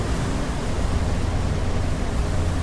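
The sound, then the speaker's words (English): Steady rain falls outdoors, a continuous dense hiss with a deep rumbling undertone that holds an even level throughout, with no voices. “It's raining now.”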